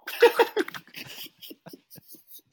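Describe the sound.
A person imitates a dog, letting out two or three loud barking yelps in quick succession, then trailing off into soft breathy huffs and quiet laughter.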